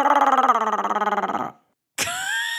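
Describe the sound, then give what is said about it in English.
Someone imitates a dinosaur roar with a loud, rough, rattling growl lasting about a second and a half, then after a short pause lets out a second, higher cry that rises in pitch. “What does dinosaur sound like? A big roar.”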